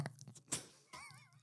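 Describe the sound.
A person briefly imitates a baby goat, giving one short, quavering, wobbly bleat after a few soft clicks and a thump. It's quiet, with no other talking.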